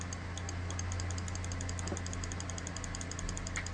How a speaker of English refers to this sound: Sorry for the rapid clicking. I'm scrolling through frame by frame on a video. It's like right below. My mouse is literally right below my microphone. I'm sure you can hear it quite clearly.